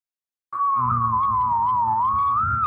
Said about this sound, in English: Well, look, I can whistle two notes at the same time. Wow. Here, let me.